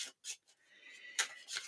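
Quiet card shuffling: a few crisp papery bursts, then a continuous fluttering riffle ending in sharper snaps, with no one speaking.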